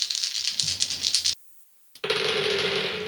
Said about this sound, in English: I'm just going to take 4 dice here and I'm just going to roll them all.